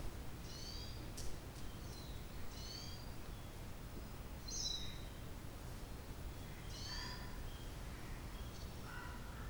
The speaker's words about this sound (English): Birds chirping, the breeze, the warmth of the sun. It all felt like it's such a miracle, it's a wonder.